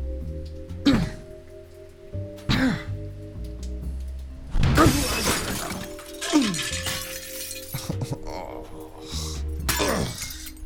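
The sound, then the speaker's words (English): A bathroom window on an 11th floor shatters in a series of sharp, loud crashes, each followed by tinkling shards, with a steady low hum running underneath and no talking. “I brushed the glass into a corner with my foot and pulled the shower curtains back to hide the broken window”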